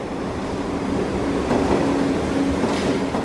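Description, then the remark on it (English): A subway train rumbles steadily over the rails, a continuous loud roar with a faint metallic whine running through it, swelling slightly midway as it passes. “What I can't see myself doing is lying atop the victim while the train passes over me.”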